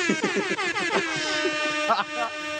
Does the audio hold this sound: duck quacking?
no